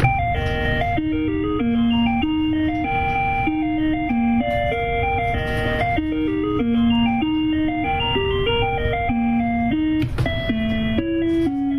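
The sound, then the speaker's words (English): Electronic bell tones sound as a button is pressed on an ice cream maker, stepping through a repeating melody of clear, bright notes at a steady, even loudness, with a low hum underneath and no talking. “And if I press it, when I press it again, that's just there's the a bell, another bell, off.”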